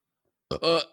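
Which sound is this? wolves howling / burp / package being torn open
burp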